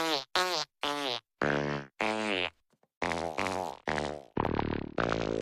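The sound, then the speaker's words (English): A rapid series of about ten loud, buzzing fart sounds, short bursts then longer drawn-out ones, with no talking; they seem to be voiced imitations rather than real ones. “Just farts. Just us letting loose.”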